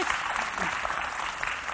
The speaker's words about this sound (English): Not only is she doing all those things, she's also running our women's ministry here at Christ Church. And so what we thought would be fantastic, you can clap for that. That's good.